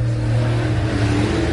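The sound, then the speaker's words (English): Race car engines roar loudly and steadily as a pink car and a blue car race around a track, a continuous drone with a slight rise in pitch toward the end, with no voices. “Looks like the pink car coming ahead around the wall. Blue car just edging ahead.”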